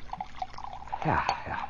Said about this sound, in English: In this beaker, I have chlorobenzene and sulfuric acid. I am about to add chloral hydrate.